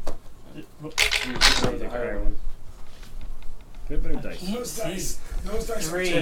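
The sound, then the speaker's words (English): A short, sharp clatter of dice being rolled across a hard tabletop during a game, a quick burst of rattling clicks, followed by people talking over the quiet afterward. “All right, roll again, because you have the advantage.”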